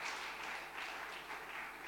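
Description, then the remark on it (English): A steady round of applause from a group, dense crackling claps that hold an even level throughout with no voices rising above them. “And thank you also for, just can give you a round of applause.”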